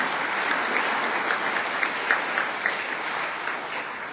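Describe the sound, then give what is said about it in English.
An audience applauds steadily, a dense patter of many hands clapping at an even level for the full few seconds, with no voices breaking through. “Yeah, he deserves a clap.”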